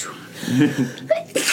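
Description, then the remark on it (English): A single sharp human sneeze, fairly loud, with a breathy intake leading into the burst and a brief trailing exhale; no other talking. “Bless you.”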